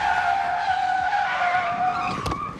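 A car brakes hard, its tires letting out a loud, sustained high-pitched squeal for a couple of seconds before a short, sharp burst of noise at the end. No one speaks.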